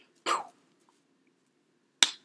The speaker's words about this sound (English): Hear that? That was a high five.